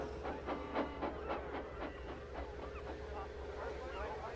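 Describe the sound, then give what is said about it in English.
A train clattering steadily along the rails, with a quick, regular clack of wheels over a low rumbling hum, moderately loud. It is a special train carrying fish from the quay to places far away, called the Flying Kipper by railwaymen. “Some of it goes to shops in the town, and the rest in a special train to other places far away.”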